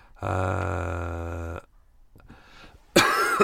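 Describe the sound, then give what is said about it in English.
A loud bout of coughing: a long, strained, rasping throat sound, a short pause, then a couple of harsh, breathy coughs bursting out at the end. “Right, let's do the questions and then I can have a good cough afterwards.”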